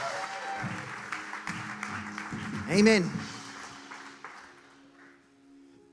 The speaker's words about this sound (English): Amen. Oh, come on, you can give a little bit better clap than that. Come on.